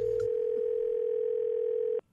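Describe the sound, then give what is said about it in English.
A steady, unbroken telephone dial tone on a prank phone call hums at a single mid-low pitch for about two seconds, loud and alone, then cuts off abruptly. “He's here with today's prank phone call.”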